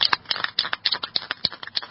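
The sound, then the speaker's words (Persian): Someone writing slogans on doors and walls at 3:30 a.m.: a rapid, uneven run of short, scratchy strokes, about a dozen in two seconds, fairly loud and with no voices. “رو در و دیوار دارم شعار می نویسم.”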